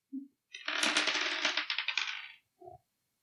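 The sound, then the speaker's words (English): Dice clatter onto a hard surface and rattle for nearly two seconds in a dense run of small clicks, then settle. A single tap comes before the roll and a soft knock after it. “Dice down.”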